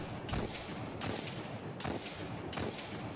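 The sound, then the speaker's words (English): A video game hand cannon, the Hawk Moon, fires four loud, booming shots at a steady pace, each blast trailing into a thick, noisy wash before the next, with no one talking. “Oh, hand cannon. It's Hawk Moon.”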